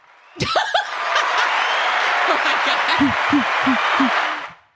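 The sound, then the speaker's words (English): A crowd bursts into sustained cheering and applause, loud and dense for several seconds, with whoops and laughter mixed in before it quickly cuts off. “It was the cheering.”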